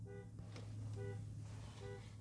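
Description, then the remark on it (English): A car alarm sounds, repeating a short harmonic honking tone roughly once per second over a steady low background hum. “I don't know whose car alarm that is.”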